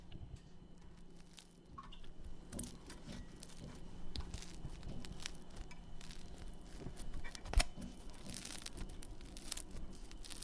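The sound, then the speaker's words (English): Crusty cooked bread, just put onto a cooling rack, crackles and crunches in a steady stream of dry, crinkly snaps for several seconds, with one sharp, louder crack partway through and no talking. “It was a lovely crunchy bread sound, and that's the sound that the French listen out for, apparently, to check that their bread is up to scratch.”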